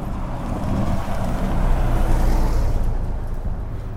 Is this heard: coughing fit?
no